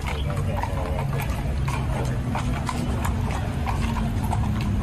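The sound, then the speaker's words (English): Horse hooves clip-clop on pavement in a steady rhythm of sharp knocks, over a constant rumble of street noise with faint voices in the background. “Like, what are you gonna do with your horse?”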